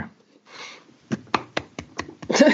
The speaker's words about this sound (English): I'm clapping.